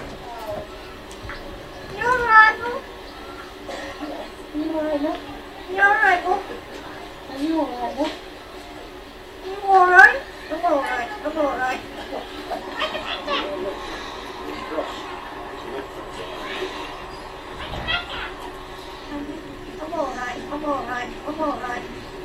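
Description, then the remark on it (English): A talking crow, known for greeting tourists with "You're right, love" in a Yorkshire accent, imitates human speech in a run of scratchy, voice-like phrases with rising and falling pitch, separated by short pauses and sounding oddly like a child babbling. “It's a talking crow.”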